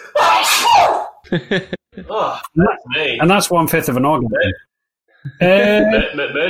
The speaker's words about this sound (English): Sneezes. I'll have what he's having.